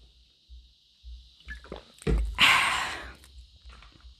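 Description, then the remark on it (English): A plastic water bottle is handled: a few soft taps and bumps, then a sharp crackling twist as the cap opens, fading into quiet sipping. No one speaks. “I already feel the vocal stress, so let me open this here water. Sorry, y'all. Let me take a sip.”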